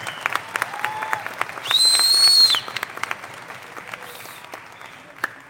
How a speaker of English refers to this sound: Please give them a big round of applause.